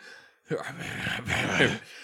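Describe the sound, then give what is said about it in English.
A man's voice lets out a rough, gravelly growl with no clear words, a strained, raspy sound lasting just over a second with a brief catch in the middle. “He's just growling gravelly.”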